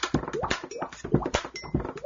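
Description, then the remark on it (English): A man drums a quick, steady rhythm on a couple of coffee cups with two ink pens, sharp hollow taps mixed with popping mouth percussion made with the side of his mouth, fairly loud and with no talking over it. “He's only using two ink pens, the side of his mouth, and a couple of coffee cups.”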